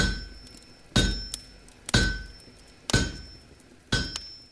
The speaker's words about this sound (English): When he did, he locked his forge to everyone, and for the next 27 nights, the villagers would go to bed to the endless clang of the hammer and anvil.